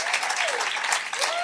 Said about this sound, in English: And everyone, please, just for a moment, give a huge round of applause for Gabor Maté.